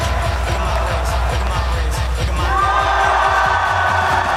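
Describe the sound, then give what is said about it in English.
Loud, sustained applause from a large crowd after a diabolo performance at a tournament, mixed with cheering and scattered whoops, filling the space continuously for several seconds without letting up. “His performance was followed by a thunderous applause.”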